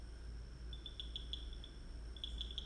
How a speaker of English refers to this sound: the sounds of the night insects, that the rain has brought them out. Instantly they've come rushing out.